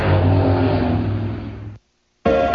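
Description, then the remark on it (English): Loud race car engines roar and rev in a dense, raspy drone, cut off abruptly by a half-second of silence before the engine noise bursts back in just as loud. “Get up and go for the loud, raucous, rip-roaring racing fun this Friday night at Ocean Speedway.”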